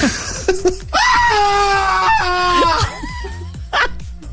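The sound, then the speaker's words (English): A voice imitates the over-the-top, shrill, feminine-sounding screaming of an Englishman heard on a street: a few long, wavering high-pitched shrieks rising and falling over about four seconds with brief breaks between them. “Way over the top, screaming, like quite a feminine scream.”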